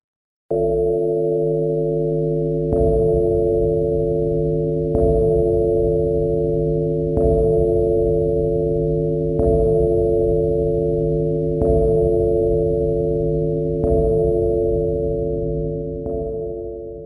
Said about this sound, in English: From this computer model, they were able to mathematically equate the vibration of the bell and add sound. Knowing that the original tone of the bell was an E flat, they were able to come up with an approximation. Here it is.